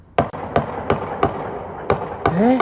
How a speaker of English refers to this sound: With several bursts of gunfire.